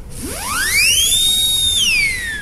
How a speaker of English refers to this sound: And then I upgraded to the whistle ring.